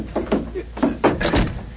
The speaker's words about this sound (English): Quick, drag him out of the doorway, and then close and lock the door. Right.